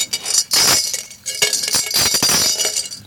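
A metal blind hockey puck, about 5 inches across, rattles in bright, jangling bursts, its loose metallic clinks shaking almost continuously for about three seconds with no one speaking.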